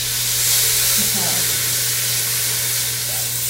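The first piece of chicken, seasoned with pepper, spice and garlic, sizzles steadily in hot oil in a pot, a loud, continuous crackling hiss with a low hum underneath and faint background murmur.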